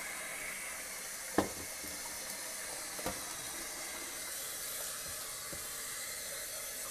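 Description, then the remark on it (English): Water runs steadily into a dish in a sink while dishes are being washed, a continuous hiss with a couple of brief clinks of dishware partway through. No one speaks. “I'm gonna let this sit full of water.”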